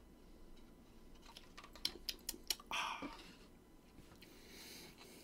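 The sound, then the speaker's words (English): A few sharp clicks, then a brief wet slurp as someone takes a quick sip of orange juice, with soft breathy noise afterward; no talking. “I will now sip on orange juice.”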